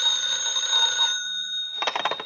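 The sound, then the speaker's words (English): A telephone bell rings loudly, a steady metallic trill that pauses briefly before a second burst of rattling rings starts up, with no voices. “A few minutes after the grandfather clock struck 11, the telephone rang.”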